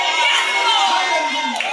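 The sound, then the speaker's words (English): A large audience shouting and cheering all at once, a loud, dense roar of many voices sustained throughout with no pause. “That's how the Corinthian church was shouting when they were reading this letter.”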